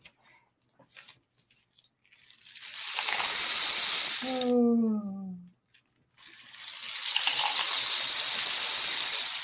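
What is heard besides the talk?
rain stick being turned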